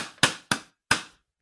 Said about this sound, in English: Turned into a slow hand clap.